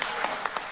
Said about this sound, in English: Fucking half-ass clap.